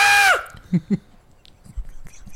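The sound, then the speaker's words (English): A goat lets out one short, loud, harsh scream that drops in pitch as it cuts off, followed by a couple of soft thumps and near quiet. “how about the goat that's on that famous screaming goat on Facebook?”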